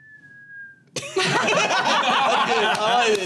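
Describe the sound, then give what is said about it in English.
A single steady whistled note, slightly falling in pitch, mimics a bird call for about a second, then breaks off into a burst of chuckling and snickering laughter from several people. “You do hear a bird.”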